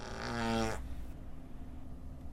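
A single short, buzzy fart noise rips out loudly for under a second, then cuts off into a faint low hum of background noise. No one speaks.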